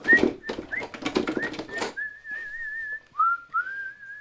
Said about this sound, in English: I'll tell you how much good the sunshine did me. I was whistling as I climbed up the stairs and opened the door.